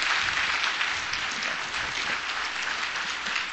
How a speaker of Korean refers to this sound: Alright, 우리 한번 한옥고등부 힙합팀 다시 한번 박수합니다.